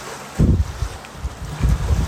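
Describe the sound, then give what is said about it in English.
Wind blows in low, rumbling gusts that swell and fade over a couple of seconds, with a steady airy hiss underneath and no voices. “Receiving the song of the wind.”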